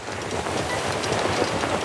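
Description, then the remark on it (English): Skiff the railboat, which has wheels and can also run on rails, sailing through water, heard as a steady, loud rumbling rattle with a faint clattering rhythm like train wheels on track, continuous for about two seconds with no voices. “As Skiff sails through the water, he sounds like this.”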